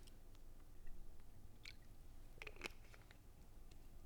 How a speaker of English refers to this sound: I really need to take a sip of water. Excuse me.